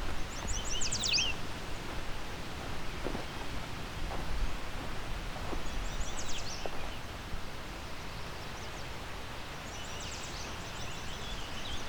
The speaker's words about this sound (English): Lots of yellow warblers. Some might be here because they're on territory. Quite a few of them will be here because of migration. As you can hear, quite close to the beach now.